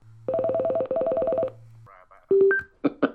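A steady low dial tone hums beneath a quick, evenly spaced run of electronic beeps, then a few separate, louder touch-tone presses follow as a number is dialed on a second phone to call someone. No one speaks.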